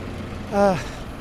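City buses, routes 104 and 101, go by on a busy street, giving a brief, loud tonal whine that swells and falls away over a steady low traffic rumble.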